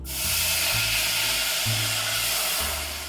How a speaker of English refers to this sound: So I'm gonna pour in the wine, and in the recipe it says be careful, it's gonna sizzle. So you will hear that. Are you ready?